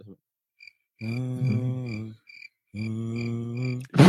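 A recording of crickets is played back: faint, steady cricket chirps pulse rhythmically in the background, while two long, loud humming tones with a rich, buzzy quality sit on top, each lasting about a second.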